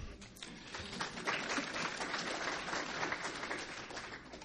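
A crowd at the 1,550th session of SACPA breaks into steady applause for SACPA, a dense, even wash of many hands clapping that holds at a fairly constant level throughout, with no voices on top.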